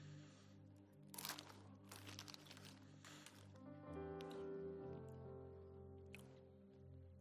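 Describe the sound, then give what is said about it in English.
Crunching of someone chewing crunchy chips: several sharp, irregular crunches over a steady low hum, with no talking. “Because I'm chewing and I want to talk.”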